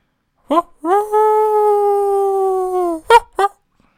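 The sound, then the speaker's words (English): A person imitates a wolf howl with one long, steady, loud howl lasting about two seconds, framed by short yipping calls just before and after. “It's been a full moon the last couple of days. Like Friday night, I went out howling.”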